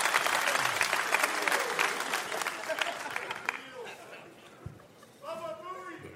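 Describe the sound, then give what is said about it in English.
An audience at Gillette in Boston breaks into loud, dense clapping for a few seconds, voting by applause on whether the speaker looks more like Larry Bird or Scalabrine, then the applause thins out and fades while a voice starts talking over the last scattered claps. “Clap if I look more like the White Mamba.”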